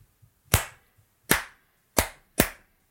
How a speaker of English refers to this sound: clap track for those uninitiated is to sync our audio together as one.